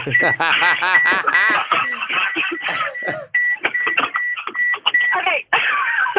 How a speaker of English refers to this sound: Hold on. What is that beeping? Oh, it's my... I need to put my seatbelt on.